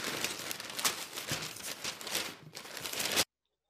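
Newspaper pages rustle and crinkle steadily for about three seconds, a dry papery crackle with a few louder flaps, then it cuts off to silence.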